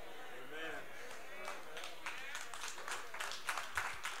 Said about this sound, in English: Those are all females clapping in here right now, and I'm getting ready to say it again until you get it.